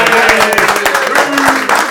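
An audience breaks into applause, a dense, steady wash of many hands clapping at full volume for two seconds, with faint voices mixed into the clatter.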